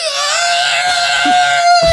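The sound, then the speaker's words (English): A voice imitates a TIE fighter's roar with a loud, sustained, harsh screech held steady at a high pitch for about two seconds, cutting off abruptly at the end. “That's a great TIE fighter sound.”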